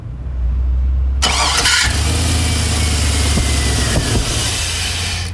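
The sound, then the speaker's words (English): A truck engine cranks briefly, then catches and roars to life, settling into a loud, steady rumbling idle with a few revs, with no talking. “Supposed to be a truck.”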